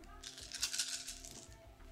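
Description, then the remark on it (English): A brief, busy clatter of seven dice rolled across a tabletop during a Coriolis role-playing game, fairly quiet over a low background hum. “Seven dice? Yeah, I think so.”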